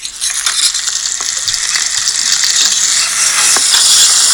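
Bacon and sausages sizzle loudly in a hot pan with a little oil, a steady bright hiss with crackling pops and spits scattered throughout, holding strong for the whole stretch with no talking.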